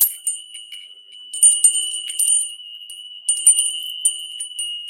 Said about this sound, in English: Wind chimes are very good to have around. They bring in the good spirits.